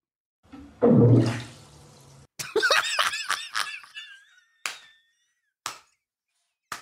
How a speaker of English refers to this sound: Fart or not? That sounds like a hippo fart. So I'm going to say a hippo fart. So it's not. That's correct. What is it? It was an iguana. It's an iguana? It was an iguana in a bathtub.